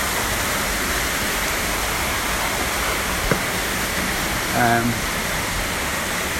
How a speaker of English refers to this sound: Now, this is really loud. There's a huge fountain. Yeah, it'll become more quiet as I progress up the stairs. It's an amazing water feature.